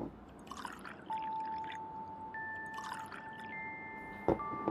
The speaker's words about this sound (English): just pour the damn shots